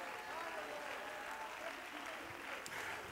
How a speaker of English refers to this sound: Come on, let's stand to our feet. Let's clap our hands right now. Will you thank God for His power? Thank God for His power.